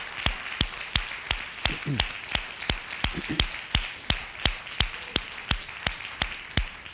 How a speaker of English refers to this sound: Let's clap one more time for Jesus, shall we?